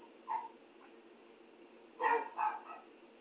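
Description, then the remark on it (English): A dog gives a short yip, then after a pause lets out a couple of quick barks mixed with whimpering, over a low steady background hum. “Oh, the dog just spoke.”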